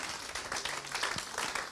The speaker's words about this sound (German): Wow, komm, dafür können wir erstmal einen Applaus dem Herrn geben. Amen. Sagen danke, Herr.